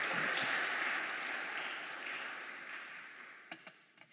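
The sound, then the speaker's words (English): A short burst of church audience applause welcoming the new student minister, dense and steady at first, then thinning and fading out, with a few scattered final claps near the end. “I expected a longer clap than that, but it's fine.”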